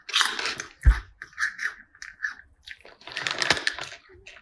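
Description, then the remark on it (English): Crunchy biting and chewing of crab, with a sharp crack near the start followed by a run of wet, crackling chews in uneven bursts. No one speaks. “Did it taste like crab?”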